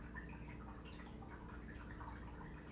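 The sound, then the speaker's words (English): Water drips steadily over a continuous low wash of running liquid, small droplets plinking at an irregular, quick pace. Fairly quiet, with no voices. “Cue dramatic water.”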